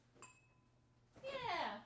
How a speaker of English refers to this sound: But you open it. It makes a strange kind of like flicking a glass sound for a moment, which rings out, and then nothing happens. Like a crystal? Yeah. Like crystal glass? Makes a very different sound.